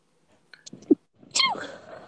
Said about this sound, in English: Bless you. Thank you. Someone is sick.